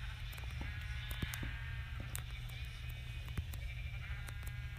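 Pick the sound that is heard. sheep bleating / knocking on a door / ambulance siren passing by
sheep bleating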